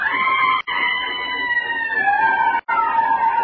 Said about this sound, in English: I stood there and watched the three climb onto the train. And it began to move. And it was the brakes or a train whistle. If only I hadn't imagined it was something else. Above the racket of the train, it sounded like...